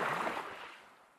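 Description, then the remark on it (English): A soft wash of chill water surges and then slowly recedes, a small wave lapping at the shore. The hiss is fairly quiet and fades away, with no voices. “Hervard alone lands upon the shore of the Isle of the Dead, chill waves lapping at her heels”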